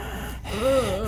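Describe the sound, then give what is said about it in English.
A voice imitates the raspy breathing of angry, scowling creatures: a drawn-out, breathy inhale with a hoarse, wavering voiced rasp over about a second, fairly loud and alone. “They don't say anything, but you can hear almost like a raspy breathing.”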